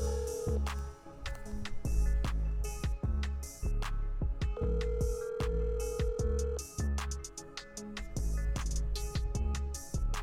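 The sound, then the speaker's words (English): An outgoing call's ringing tone, a steady two-second burr, sounds over a loud, punchy drum-heavy music beat that dominates the mix throughout. “All right, let's make this phone call. I hope she answers.”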